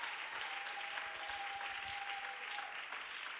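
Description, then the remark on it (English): A church audience claps steadily in praise of the Lord Jesus, a dense wash of many hands applauding at once, sustained and fairly loud for the whole stretch with no talking over it. “Give a mighty clap to the Lord Jesus.”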